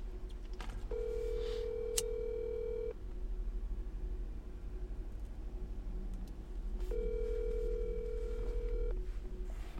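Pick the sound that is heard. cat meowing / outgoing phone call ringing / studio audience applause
outgoing phone call ringing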